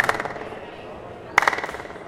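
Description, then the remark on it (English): Two sharp hand claps, one at the very start and a louder one after a pause, each followed by quick fluttering echoes that ring and fade over about half a second. “So if someone claps from here, and one can hear that clapping sound on the top of the tree.”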